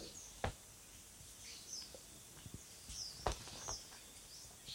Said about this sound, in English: the crate crushes a small bird. The seconds a shrill cry